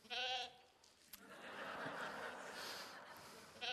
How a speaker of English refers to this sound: Don't worry, there's not a sheep loose here, I don't think. The sheep is loose in the sound booth, I think.